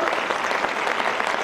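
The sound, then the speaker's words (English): A church audience claps steadily together in thanksgiving to God during a sermon, a dense, even wash of many hands with no gaps and no voices standing out. “You say, man, are we going to clap the whole time? Yeah, we are, man.”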